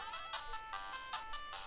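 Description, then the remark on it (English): A bright, tinkling bell chime in a video game rings out in quick repeated strikes, sustained high tones shimmering over each other in a steady melodic pattern, with no voices present. “There's a bell.”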